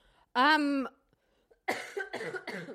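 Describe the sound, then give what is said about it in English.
A person coughs: a loud, voiced hacking burst, a short pause, then a quick run of three rough, harsh coughs. “Pardon me, I cough.”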